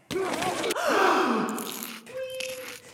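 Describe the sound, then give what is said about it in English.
A single loud sneeze: a sharp breathy intake followed by a burst of forceful air, then a brief trailing exhale. No talking. “I haven't sneezed in a while.”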